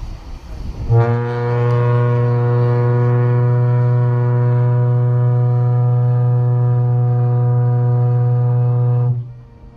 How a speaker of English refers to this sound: I thought it might be a good idea to play it right now so our listeners can hear it. So here is the foghorn at Sumber Ahead.